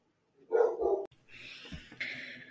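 animal, dogs barking

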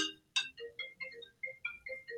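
signal or alarm, mobile phone ringing

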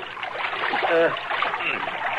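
nature, water trickling

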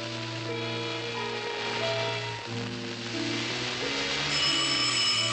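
signal or alarm, alarm ringing

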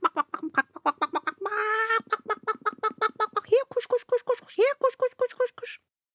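bird, chickens clucking

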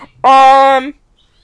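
bird, bird chirping

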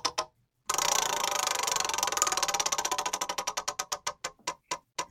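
household object, spinning prize wheel

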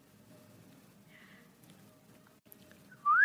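human body sound, loud human whistle

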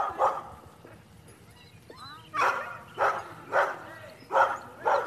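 animal, dogs barking excitedly

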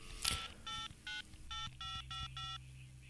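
signal or alarm, telephone number being dialed

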